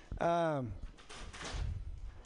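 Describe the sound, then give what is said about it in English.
A door creaks with a falling, squeaky whine, followed by a couple of scraping rustles and a low, muffled thud as it closes. “Fuck that door.”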